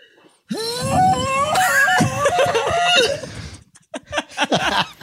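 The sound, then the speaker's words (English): A voice imitates an ancient sea glass conch announcement tube: a loud, sustained, wavering wail of about three seconds with a reedy, buzzing tone, followed by a few short breathy sounds. “What sound does the ancient sea glass conch announcement tube make? Okay, it goes like this.”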